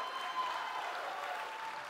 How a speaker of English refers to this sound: Come on, can we give God a clap of praise for what He's done in our lives? Come on, if God's done anything great in your life, come on, let's give Him a huge clap of praise.